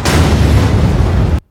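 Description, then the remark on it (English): The core of nuclear Reactor 4 explodes after its power surges beyond 33,000 megawatts against a design of 3,200 megawatts. It roars at full force, a dense, rumbling blast that holds steady for over a second before cutting off abruptly into silence. No voices. “The core can no longer be held back. At long last, we have arrived. 123-45, explosion.”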